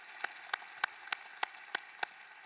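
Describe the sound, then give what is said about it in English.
Applause in a church during the offering, in the form of about seven sharp, evenly spaced claps in a slow steady rhythm, fairly faint over a low hiss, with no voices. “Can we give a big round of applause for what God is going to do in our church and in your lives?”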